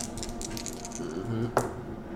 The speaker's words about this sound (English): Oh my gosh, another nat 20! Yeah. You are a good dice!